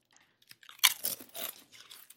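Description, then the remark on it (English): Crisp, crackly crunching of ranch-flavored chips from a paper tube being bitten and chewed, a loud bite followed by a string of irregular, brittle crunches that gradually taper off, with no talking. “Smells like ranch in a paper tube.”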